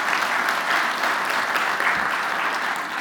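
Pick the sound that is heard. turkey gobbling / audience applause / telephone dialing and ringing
audience applause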